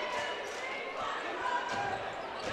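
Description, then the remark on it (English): A basketball is dribbled by Duke of the TY Tigers during a game against the Arrows, a few bounces thudding under steady crowd noise and arena chatter, partly masked by the din. “Duke with the basketball.”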